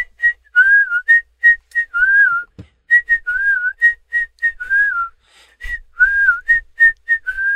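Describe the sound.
A bright whistled melody, the whistle hook of a song, repeats a short catchy phrase, with quick staccato notes alternating with longer gliding tones in a steady rhythm, with no voices.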